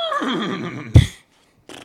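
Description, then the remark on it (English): A voice imitates a horse's whinny, a wavering, rising-and-falling squeal of about a second, followed by a sharp burst, a short silence, then a brief breathy sound at the end. “What, you a horse now? I'm going to start doing that.”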